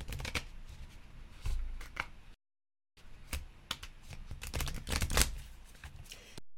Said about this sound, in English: Let me shuffle these again because every moment different. I know I shuffled them already, but gotta shuffle them again. Well, let me shuffle them because cards are coming out. They're flipping out. One shuffle. Two.